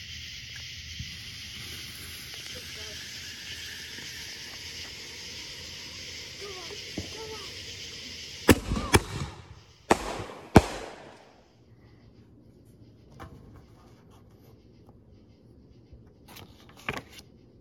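Fireworks go off in a sharp cluster of loud cracks and bangs midway through, preceded by a long hissing fizz as they burn, then quieter scattered pops trailing off outdoors.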